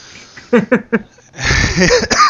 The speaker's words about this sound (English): Excuse me. Well, that's a good cough on the mic. Hope you like that.